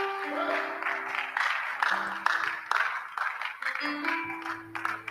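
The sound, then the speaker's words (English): Thin, scattered audience clapping for Jesus, a steady patter of light claps without much force, over a low sustained keyboard-like tone and faint crowd murmur. “Oh, the way you are clapping, it's very weak.”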